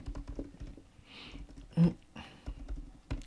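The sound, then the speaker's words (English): Typing on a computer keyboard: a quick, irregular run of light key clicks, with one louder, heavier keystroke midway and no voices. “You can talk to people on there while typing.”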